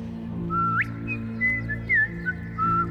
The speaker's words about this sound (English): Why do you hate whistling so much? Whistling. Nothing wrong with a little whistle.